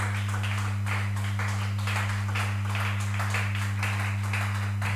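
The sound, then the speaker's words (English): An audience at a church service clapping softly in a steady, even rhythm to acknowledge Reverend Bernard Yankee, the claps blending into a muted patter over a constant low electrical hum, with no one speaking. “The clapping is very low.”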